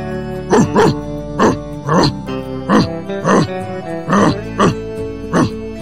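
A dog barks about eight times in a steady, fairly loud series of short sharp yaps, some in quick pairs, over a faint humming background.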